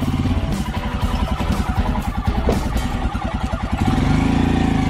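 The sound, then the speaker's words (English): A motorcycle engine runs steadily at a low idle in first gear, its loud, rhythmic chugging pulsing evenly throughout, with a slight rise in throttle near the end. “It's on in first gear and use the clutch's friction zone to slowly pull the motorcycle up.”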